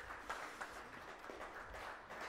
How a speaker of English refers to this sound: Alrighty. Give a round of applause for our team as they get ready to go.